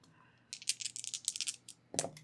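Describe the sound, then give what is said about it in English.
A short burst of rapid clattering as two dice are rolled in a tabletop role-playing game, landing on two ones, like dice rattling in a cup or tumbling across a table, followed by a final sharper clack as they settle; fairly clear, no voices. “Roll to act under pressure.”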